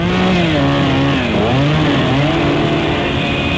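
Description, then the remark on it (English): A voice imitates a Black & Decker workmate electric power drill with a loud, continuous buzzing whine that dips and rises in pitch, like a motor straining and revving up again, unbroken for a few seconds. “Okay, here's my impression of a Black & Decker workmate drill.”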